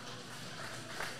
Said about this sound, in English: Here comes the applause for Cody Behringer and Lilith.